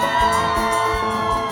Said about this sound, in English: Are you excited to be in the house of the Lord? Give the Lord a shout.